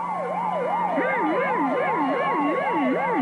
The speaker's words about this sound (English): It is very hard to hum to. I do not think it is the sound of music. A fire engine, maybe. Yeah, could be a fire engine.